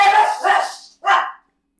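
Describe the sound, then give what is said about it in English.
Dogs bark loudly: a couple of quick, rough barks run together, then after a short pause one more sharp bark, with no talking. “Dogs are so dumb.”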